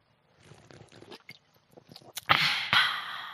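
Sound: sipping a drink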